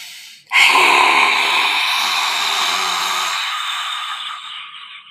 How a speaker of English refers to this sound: We're going to take a big breath in through our nose. This is a funny one. We're going to breathe out through the mouth. We're going to stick our tongue out. And then we're going to make kind of a loud, sort of like a ha sound.